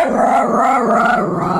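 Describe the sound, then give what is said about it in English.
A loud dog growling and barking sound effect, used as the wrong-answer cue in a quiz game, a continuous snarling rumble lasting under two seconds, heard alone with no talking. “Heard a lot of those at wrong. The pet parade this past Sunday.”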